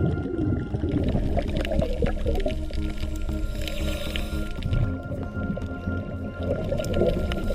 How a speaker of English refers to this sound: You can see on this healthy reef, we've got these sounds that come up every now and then. That's croaking from a fish we often hear on these healthy sites. Whereas on the degraded reef, this is missing.